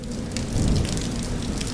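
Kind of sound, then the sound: nature, rain falling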